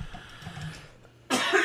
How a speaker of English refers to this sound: as I cough